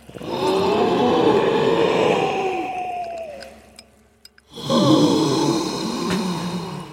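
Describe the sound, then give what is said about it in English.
Raspy, wheezing breathing of the female Cenobite, loud: one long drawn-out rasping breath that fades, a brief silent gap, then a second harsh breath. No talking. “Just the wheezing, breathing sound.”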